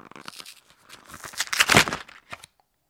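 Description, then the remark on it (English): A pasta box seal is lifted open with a rapid run of small ticking clicks and crackles, growing louder toward the middle, then a final pop-like click before silence. No one speaks. “What I love about it is the way that the seal comes down, and when you lift it up, it makes a nice pop. So hear that ticking.”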